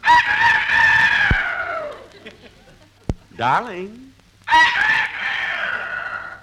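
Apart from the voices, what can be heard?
rooster crowing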